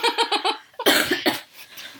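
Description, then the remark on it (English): A quick run of four rhythmic, laugh-like vocal bursts gives way to a loud, harsh cough, trailing into a couple of softer coughs. “You can't say funny things while I'm coughing, because then the funny things get edited out.”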